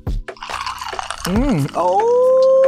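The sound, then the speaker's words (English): A drink is poured into a glass, a loud, continuous splashing gurgle whose pitch climbs as the glass fills, then settles into a steady ringing tone. “Gotta get that water out there. All right, now. All right, gonna get your drink of choice.”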